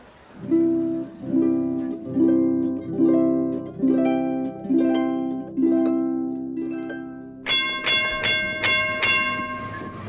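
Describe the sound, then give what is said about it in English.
A Philadelphia trolley car on rails gives off a steady run of ringing, tonal pulses, roughly one per second, that shift to a brighter, higher clang for the last couple of seconds. No one speaks. “Here comes the next trolley car.”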